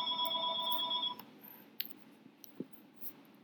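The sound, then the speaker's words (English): A bell in a studio rings with a bright, steady electronic tone for about a second before cutting off, followed by a few faint scattered clicks and taps over low background hum. “Well, that bell signifies that the podcast is nearly over, as does that.”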